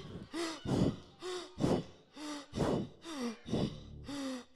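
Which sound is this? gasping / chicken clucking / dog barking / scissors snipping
gasping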